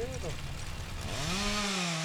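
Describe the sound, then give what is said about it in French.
A chainsaw engine, used for cutting softwood and thinning hornbeam and ash in a mountain forest for silviculture, drones loudly throughout, its pitch dipping and then climbing in a strong rev before settling into a steady high whine, with a rough, buzzing texture. “il faut aller en montagne, couper des résineux, faire de la silviculture”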